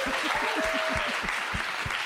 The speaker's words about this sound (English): Big round of applause for Arthur Matthews.